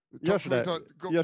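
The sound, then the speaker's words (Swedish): A voice imitates a car coming into a pit stop, making three loud, buzzy vocal bursts with wavering pitch like an engine revving, separated by short pauses. “Lät det som en bil eller?”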